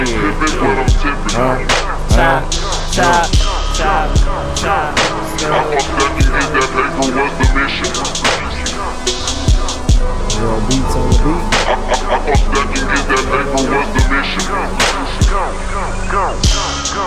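A rap track plays loud, with a steady punchy beat, deep bass and layered melodic sounds running continuously throughout.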